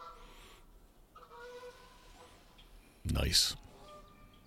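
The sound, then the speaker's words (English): Geese honk in scattered, wavering calls across several seconds as they fly in toward a yard, then a sudden loud, harsh burst of sound cuts in near the end before the faint honking resumes. “I hear some geese. Here they come.”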